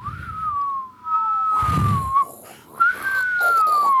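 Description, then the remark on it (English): Around a campfire, a person whistles in a long, wavering tone that slides slowly up and down, imitating a birdcall, with brief breaks and a low rumble of background noise partway through. “Zero for your ability to imitate a bird”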